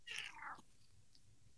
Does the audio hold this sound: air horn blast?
no